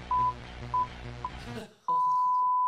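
A censor-style bleep tone: three short, steady high-pitched beeps over busy background music, then the music cuts out and one loud, sustained bleep rings on alone.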